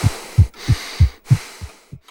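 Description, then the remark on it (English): A steady, regular heartbeat thumps in low, muffled lub-dub pairs, about three full beats and the start of another, over a faint background hiss with no one speaking. “REM is a stage of sleep characterized by rapid eye movement, or REM, where your eyes are closed but are still moving around, a regular heartbeat, and increased rates of respiration.”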